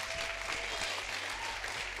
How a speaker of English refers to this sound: Come on and clap like you believe this.